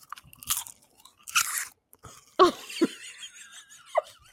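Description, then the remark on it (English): Popcorn with cheese, eaten as the chips in chips and cheese, being crunched and chewed: a few sharp, crackly bites followed by squeaky, wet chewing sounds, fairly loud with pauses between and no talking. “Popcorn is not a good chip for chips and cheese, man.”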